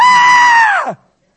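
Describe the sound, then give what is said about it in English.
A voice imitates a woman's loud shriek, the medium crying out on seeing Samuel in a Bible passage: one piercing, high-pitched scream held steadily for nearly a second, then sliding down in pitch as it cuts off. Very loud, with no other sound. “No, she shrieked with a loud voice, and the king said to her, "Do not be afraid, but what do you see?"”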